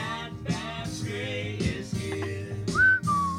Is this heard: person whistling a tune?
yes